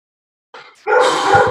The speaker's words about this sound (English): I have a barking dog situation. Behind the curtain.